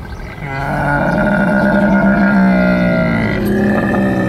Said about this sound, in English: That is a lion?